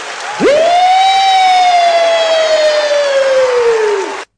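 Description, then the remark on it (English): A voice imitates a police car siren: one long, loud wail that swoops up sharply, then slowly glides down over about four seconds, heard alone. “And the cars would come rushing across town, be woo, woo, woo, woo, woo. And there won't be no siren”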